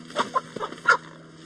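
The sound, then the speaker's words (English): A large Brahma hen with elaborately patterned brown and white feathers clucks several times in short, uneven bursts during a photo shoot, with a soft steady hum in the background and no talking. “And the rest of us begin with the second bird, a bird called a Brahma, with elaborately patterned brown and white feathers.”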